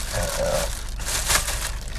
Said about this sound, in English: Bear with me for a moment. Let me package up my trash here.